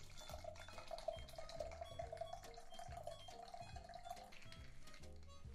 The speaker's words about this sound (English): Okay, and then after you've given it a good shake, we're gonna pour the cocktail into the glass.